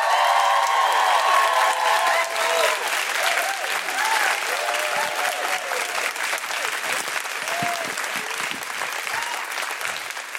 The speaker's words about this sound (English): One of my favourite acts coming out now. Please put your hands together and make incredible Guilty Feminist woohooing noises for the wonderful Jayde Adams!